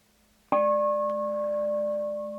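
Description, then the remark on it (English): A meditation bell is struck once, ringing out with a bright metallic attack and steady, layered tones that hum on and slowly fade without any talking. “Mindfulness, you could say, notices that is quiet when I struck the bell that time.”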